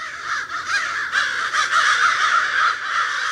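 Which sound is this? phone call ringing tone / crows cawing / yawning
crows cawing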